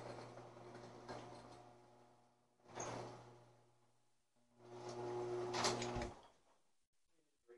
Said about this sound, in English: Hold on, it's about to get loud real quick. It's about to get loud. I gotta open this door up.